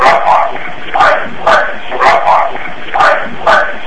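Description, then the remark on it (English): A dog barks over and over in a steady rhythm, roughly two yaps per second, each bark short and sharp over a constant hiss, fairly loud but slightly muffled, in an EVP recording made at the Tenney Gatehouse, a Thuin Historical Society museum, when no animals were present. “That's either it's either a definitely sound of a dog barking”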